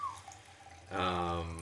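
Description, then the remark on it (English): Whistle Pig Vermont whiskey is poured into a glass: after a quiet moment, a steady, gurgling stream of liquid starts and keeps running to the end. “Let's pour a little whiskey here.”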